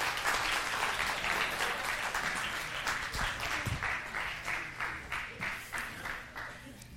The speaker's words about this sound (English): All right, come on. Let's give these guys a big round of applause.